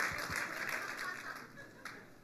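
A church audience at Zoe breaks into a brief burst of clapping during a sermon, a dense patter of many hands that holds steady and then starts to thin out, with a faint murmur of voices underneath.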